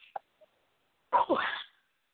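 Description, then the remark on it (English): A single sharp sneeze bursts out, a quick intake followed by a loud explosive release lasting about half a second, preceded by a couple of faint clicks and otherwise silence. “Bless you.”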